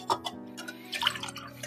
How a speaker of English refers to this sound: This is when the... this is when I deafen the audience, and then I'm going to pour that using my little strainer thingy.